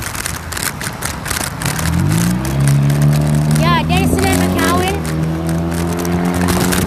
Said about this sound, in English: So much cars, bro. Who made these much cars?